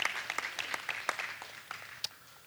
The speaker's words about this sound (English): All right. You can clap.